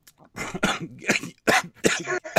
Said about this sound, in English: Yeah, I did that cough, too, because it's the Halloween show.